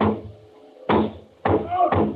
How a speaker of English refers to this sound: Would no one ever hear my calls? I went to the door, banged on it.